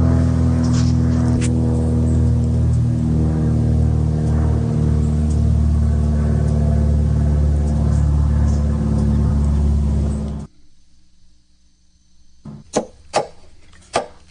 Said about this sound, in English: Here comes the airplane.